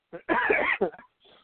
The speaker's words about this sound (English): You're a little bit under the weather. A flu thing going on. I've had a cough for like months now. Probably you can listen to an hour of us just hacking and sneezing into the radio.